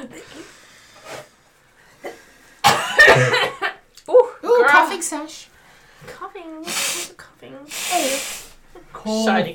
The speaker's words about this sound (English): Can I blow my nose and cough? Oh, yes.